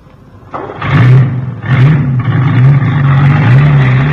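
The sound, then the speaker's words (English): A heavy truck engine starts on the key, roars to life and revs, its low rumbling drone rising and wavering steadily as Professor Tobin from the London Zoo drives the truck away with the animals; loud, with no voices. “Hey, where is he going with the truck?”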